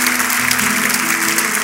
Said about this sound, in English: I think you should all clap for them, encourage them today.